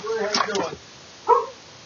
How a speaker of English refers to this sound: It's slobbering. He won't bite you. Is that a Mastiff? Yeah, King Corso, Italian, man. How much does that dog weigh? He's probably about 150 now. He's just a puppy. Puffy? He's just a baby. He just made a year old.